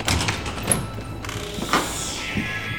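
A door slides open with a mechanical grinding whoosh, a few clunks along the way, then a steady hiss as it finishes moving. Moderately loud, with no voices; the door had been locked and was unlocked earlier, and a group comes in through it.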